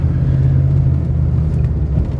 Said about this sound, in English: And really, oh boy, I'm just waiting for some traffic here, and it's, here we go.